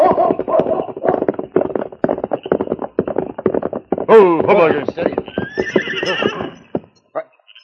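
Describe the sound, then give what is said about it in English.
A horse grazing beside a trail whinnies loudly, a shrill, quavering neigh lasting a couple of seconds, preceded by a steady run of clip-clopping hoofbeats. “A horse grazing beside the trail.”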